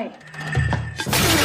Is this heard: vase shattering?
yes